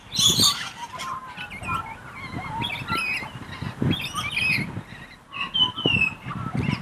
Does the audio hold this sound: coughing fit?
no